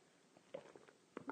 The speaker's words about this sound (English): I like coffee. And join me now for the unparalleled pleasure, the dopamine hit of the day, the thing that makes everything better, the simultaneous sip. Go.